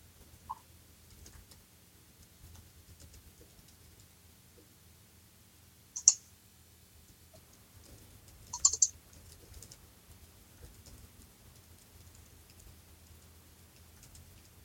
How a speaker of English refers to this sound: I can hear you typing, but you can't hear me.